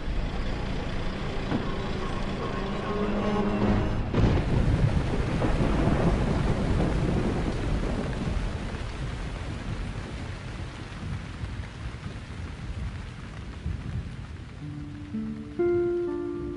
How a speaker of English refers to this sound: Gosh, this is a wicked storm that's about to come through here. It is.